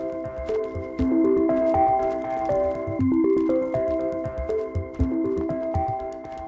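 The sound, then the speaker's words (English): A cartoonish bat echolocation sound effect, a bat sending out its sonic sounds as it leaps into the air: bright electronic beeping tones stepping up and down in pitch, repeating in quick cycles, steady and fairly loud with no voices. “Buffy leaps into the air. She sends out her sonic sounds.”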